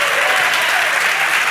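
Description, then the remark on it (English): Steady audience applause, a dense wash of many hands clapping at an even, sustained loudness throughout, with no voices standing out above it. “Con ese aplauso, yo creo que No ganamos ningún premio en el día de hoy, pero I don't think we win any rewards with that applause.”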